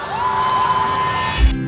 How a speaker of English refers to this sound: Number five. Ladies and gentlemen, how about another round of applause?